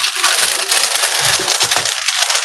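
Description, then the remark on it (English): Parchment paper being unrolled from its box, a steady, loud crinkling and rustling with bright, papery crackles that carry on for a couple of seconds, no voices. “So I'm going to unravel my first thing of parchment paper.”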